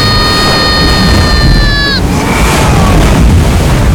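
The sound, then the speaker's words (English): A giant ocean wave crashes against a ship off the starboard side during a storm in a loud, continuous roar of rushing water, with a steady high whistling tone above it that bends downward and cuts out halfway through. “Giant wave off the starboard side.”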